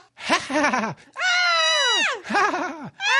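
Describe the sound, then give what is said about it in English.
A child screams shrilly in several loud bursts, one long sustained wail between wavering, trembling shrieks, with a harsh, screechy edge and no talking. “And that kid's scream sounds like it's put together, like mixed together with a bunch of different stuff.”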